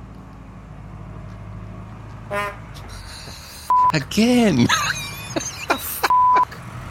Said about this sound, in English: It's probably a sewer truck. It's, you know, pumping out someone's shit. It's, we get trucks on this road. I can't barely fit two cars.